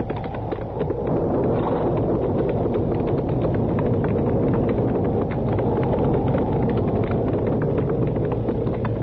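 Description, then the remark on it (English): Horses' hooves clip-clop steadily throughout as the horses are ridden, a rapid run of overlapping hoofbeats set against a loud, constant rush of wind and low rumble. No one speaks. “Well, there ain't even no shed there for the horses.”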